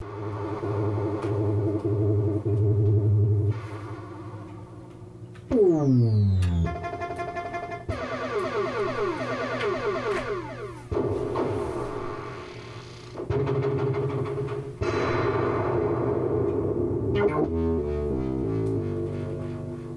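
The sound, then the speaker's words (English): A rapid stream of electronic sound effects from a 1984 Zaccaria Devil Riders pinball machine from Italy: synthesized engine rumbles, descending and rising swoops, bleeping tones and buzzy chirps, loud, with no talking. “So happy listening from Devil Riders, 1984, Zaccaria Pinball from Italy.”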